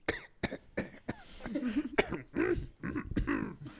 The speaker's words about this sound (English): Interior, Yoda's hut, Dagobah. Leia enters Yoda's hut. She overhears his coughing and finds him.